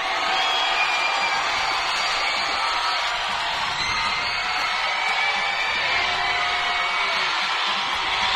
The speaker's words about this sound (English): This is great. You can hear the cheers. You can hear the crowd. I don't feel like we need to talk because I think that the crowd around us is doing a lot of the talking for us.